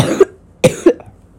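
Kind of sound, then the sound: human body sound, cough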